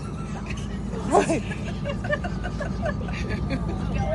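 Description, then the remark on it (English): A bus rumbles past, its low engine drone and road noise filling the background steadily, with a brief voice rising over it partway through. “Never mind a bus.”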